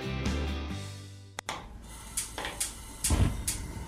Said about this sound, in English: These are the sounds of a dinner. But not just any dinner. A dinner that almost didn't happen.